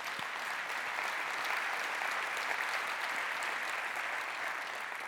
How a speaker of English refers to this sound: You can applaud.